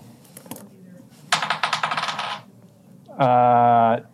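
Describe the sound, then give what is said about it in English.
Friendship dice, rolled for a strength check, rattle and tumble across a table for about a second, a quick burst of bright clicking impacts, followed by a brief steady tone. Faint background murmur precedes the roll. “all right, friendship dice.”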